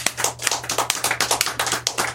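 A round of applause from an audience at the Old Soul Radio show: brisk, steady hand claps in quick succession over a low steady hum, fairly loud and with no one talking.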